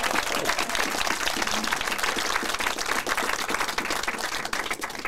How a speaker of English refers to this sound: Big round of applause for that, please. Come on.